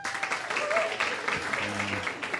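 An audience breaks into steady, crowded applause, voting by applause on which contestant will win a game. The dense clapping stays fairly even throughout, with a few scattered voices and cheers mixed in.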